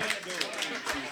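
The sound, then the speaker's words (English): An audience at a panel event applauds, a dense patter of many hands clapping at once with a steady, moderately loud wash of sound and voices mixed in underneath. “Give a clap for them.”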